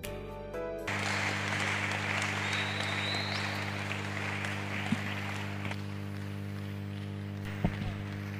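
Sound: audience clapping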